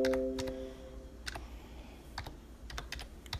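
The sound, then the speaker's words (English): Irregular keystrokes clatter on a computer keyboard, sharp clicks arriving in uneven bursts with short pauses, moderately loud, while a faint tone hums briefly at the start. “Don't make fun of my typing, y'all.”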